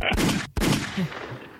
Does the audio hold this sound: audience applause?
no